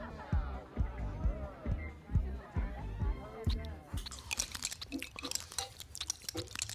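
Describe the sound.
Exaggerated, cartoonish chewing and chomping from the Simpsons family eating food together in The Simpsons: a steady run of low, thudding bites gives way to a burst of loud crunchy, squishy munching, with grunting, mumbling voices mixed in.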